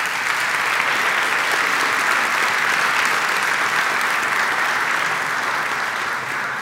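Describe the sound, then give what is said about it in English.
Sustained audience applause, a dense, steady wash of many hands clapping at an even loudness for several seconds, with no voices rising above it. “I want to applaud what we're doing here, what you all are doing here.”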